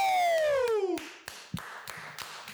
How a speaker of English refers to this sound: We're getting claps off screen. We've never got a clapping ovation from behind. Was there one? I'm sorry, but if you boys are clapping out there, I suggest you do it a little louder.